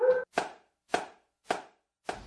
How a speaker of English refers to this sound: That's a perfect time to take a break. The dog's gonna take us out.